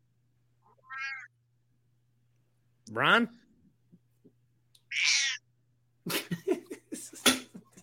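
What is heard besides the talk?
cat meowing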